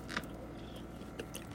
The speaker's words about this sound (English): I'm going to try to eat a bite of a strawberry and a bite of a Reese cup and see how it goes. I wanted a Reese cup.